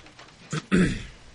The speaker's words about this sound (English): Keep clearing my throat into the microphone, and for that, I apologize. Unprofessional. But we don't have cough buttons here. Nope. Sucks. We do. They just are louder than the actual coughing.